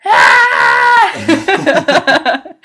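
A loud, sustained high-pitched scream from one or more people lasts about a second, then breaks into a string of short, excited vocal bursts.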